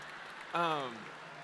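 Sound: audience clapping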